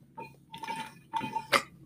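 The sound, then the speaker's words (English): Someone drinks from a nearly empty water bottle: three short bursts of sucking and gurgling, airy and hollow, ending in a brief sharper slurp, with no talking. “Darn, I'm out of water.”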